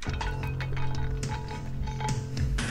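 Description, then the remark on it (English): A pint glass is tapped several times at an uneven pace, each tap a sharp, bright clink with a faint ringing tone lingering underneath, over a steady low hum. “That was Emily's pint glass.”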